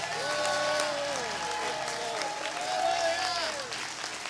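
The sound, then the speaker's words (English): An audience claps for Jesus, dense and steady for about four seconds, a loud wash of many hands. Sustained tones and voices carry beneath the clapping. “Come on, give Jesus a great big hand clap.”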